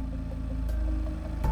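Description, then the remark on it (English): A car engine idles in the darkness at the end of a street, with a steady, low rumble and a faint rhythmic chug, briefly punctuated by two soft clicks or bumps. “Her eyes finally landed on a car idling in the darkness at the end of the street.”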